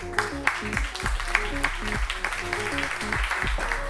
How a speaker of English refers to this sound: Enjoy. A round of applause.